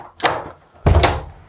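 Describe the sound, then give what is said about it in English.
A front door is unlocked and pulled open: a sharp metallic clack, a short pause, then a heavier thunk as the door gives way. No one speaks. “Ooh, the door's locked.”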